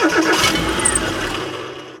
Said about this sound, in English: She tries several times, but the engine won't start.